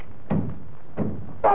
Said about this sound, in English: What's the matter, darling? Oh, I've hit my finger with a hammer.